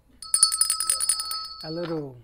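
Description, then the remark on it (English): A phone ringtone for a call-in to the Broken Cafe Show chimes in quick repeating electronic pulses for about a second and a half, fairly loud, then a voice starts speaking as the ringing cuts off. “Do we have a phone call, guys?”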